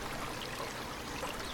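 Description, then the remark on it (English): A wilderness stream trickles and burbles steadily over boulders, disappearing under them, a soft continuous wash of flowing water with no voices, fairly quiet and unchanging throughout. “Check out how the stream just disappears under those boulders.”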